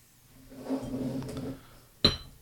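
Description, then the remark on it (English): A dark barrel-aged stout from a freshly opened bottle is poured hard into a glass for about a second, a steady splashing gurgle with a rising hiss, then a short pause before a single sharp, bright glassy clack. “Hard pour, it don't matter with these.”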